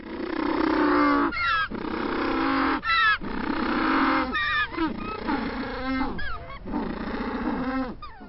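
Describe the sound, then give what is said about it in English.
An African penguin (Spheniscus demersus), also called the black-footed or jackass penguin, gives its loud, braying call: a string of harsh, honking, donkey-like bursts with short breaths between them, rising and falling in pitch, with no voices over it. “depending on who you're talking to, some people refer to it as the African penguin, the black-footed penguin, or the jackass penguin, and that's because of the sound it makes.”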